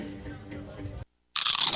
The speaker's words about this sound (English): You know that sound anywhere. It's the crisp crunch of that first nacho chip.